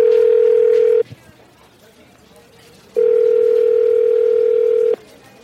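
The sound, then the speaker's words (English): A phone line rings on an outgoing call: a steady, loud electronic ringback tone sounds briefly, pauses for a couple of seconds, then rings again for a longer stretch. “Let's go ahead and get him on the phone right now.”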